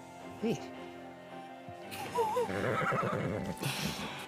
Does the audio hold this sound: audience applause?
no